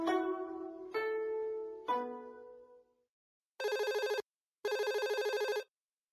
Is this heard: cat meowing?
no